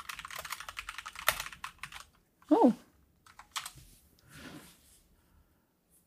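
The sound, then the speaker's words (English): Rapid, uneven clicking of computer keys typed in quick bursts that pause briefly while someone lets out a short exclamation, then the tapping resumes more softly. “It's clicky clack keyboard time.”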